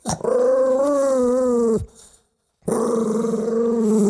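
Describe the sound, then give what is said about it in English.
A loud voice imitating a dog, growling and barking in two long, rough, wavering bursts separated by a brief silence. “There goes …'s dog, everybody.”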